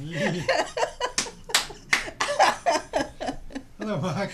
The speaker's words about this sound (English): No, no, that clapping wasn't for you. That clapping was so that I can line up all the audio.